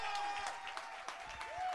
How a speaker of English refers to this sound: This applause is not for us, but it's for the Lord. So give it up for the Lord. Give it up for Jesus.